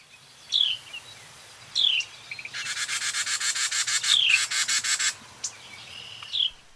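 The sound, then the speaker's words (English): A Carolina wren gives a few sharp, downward-sweeping chirps, interrupted by a fast, buzzy rattling chatter of about a dozen rapid pulses, against a quiet outdoor background. “They also use their chirps to communicate about predators around them and avoid them.”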